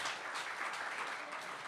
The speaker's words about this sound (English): Who tasted the French toast this morning? Yeah? Okay, we can give another round of applause